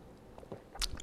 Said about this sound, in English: Hang on a second. I got to take a sip from my espresso. Okay, hang on.